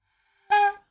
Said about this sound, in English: I really want to honk this party hooter. Can I just honk the party hooter very gently? Honk it away from the microphone, please.